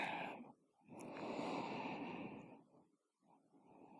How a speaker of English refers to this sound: Can you feel me breathing?